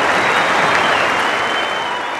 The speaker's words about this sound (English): Quite an incredible scene. Greg Chappell cheered all the way up to the middle. Everyone off the backside standing up, cheering him out to the middle. And this is last test match.